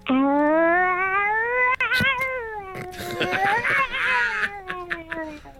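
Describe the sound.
A woman imitates fighting cats, the noise she uses to stop her own cats fighting: one long, loud, wavering yowl that rises and dips, breaking into harsher, snarling cries toward the end.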